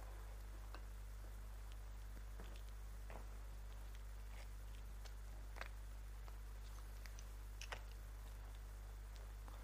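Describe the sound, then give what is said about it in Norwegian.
A pen scratches and taps across paper in short, irregular strokes as someone draws a picture, quiet, with a steady low hum in the background and no one talking. “Jeg har lyst til å bare tegne en tegning.”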